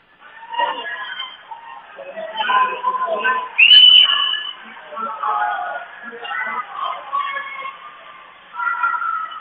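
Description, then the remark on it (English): A referee's whistle in a basketball gym, during a game between Audubon and Panorama, gives one short, sharp blast partway through as a ball is tipped out of bounds, cutting above a steady stream of talk and echoing gym noise that carries on before and after. “And we've got a whistle and a ball tipped out of bounds.”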